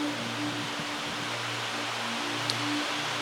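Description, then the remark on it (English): Heavy rain starts pouring again in a dense, unbroken hiss that fills the whole clip at a steady level, with a faint low hum running underneath and one brief sharp tick partway through. “One of the biggest enemies of an expected end, it's starting to rain again heavily here, is laziness.”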